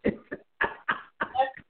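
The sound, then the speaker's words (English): In the background, a woman with allergies blows her nose in a series of short, forceful, snorting bursts. There are about five in quick succession, moderately loud, with no talking over them. “I'm sorry, you may hear producer in the back blowing her nose with all of these allergies.”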